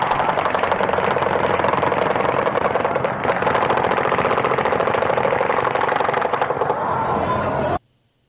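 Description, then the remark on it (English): Relentless automatic gunfire in a video clip rattles nonstop for about eight seconds, loud, with rapid overlapping bursts and a faint engine-like drone underneath before it cuts off abruptly. “I'm going to queue up to 39 seconds in, and this should just be continuous gunfire.”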